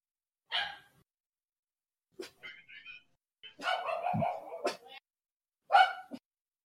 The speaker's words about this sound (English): Oh, Jack's barking.